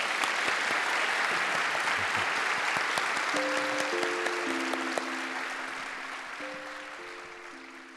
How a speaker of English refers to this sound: Everybody, can we please have a round of applause for Jonathan?